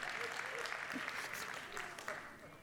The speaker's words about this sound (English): Thank you for that very weak hand clap from this section over here.